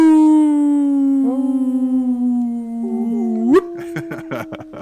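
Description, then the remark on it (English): A long, sustained howl that slowly sinks in pitch, wavers, then swoops upward near the end, apparently a person imitating it; brief choppy vocal sounds follow. “It's the howling.”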